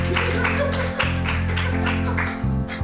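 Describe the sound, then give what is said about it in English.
A comedy audience at Canary in a Comedy Goldmine, live in Edinburgh, claps and applauds steadily for about three seconds to welcome a comedian, a dense patter of hand claps over a low, sustained droning tone underneath. “Now clap your hands like a prick and welcome”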